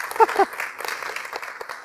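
An audience at Edgewater applauding the pastor's 8-year anniversary, a steady wash of many hands clapping at moderate volume that carries on throughout, with a brief voice cutting in near the start.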